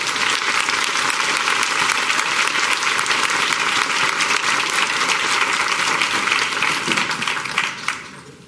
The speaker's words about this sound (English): So I will wrap up and just please join me in giving our panelists a round of applause.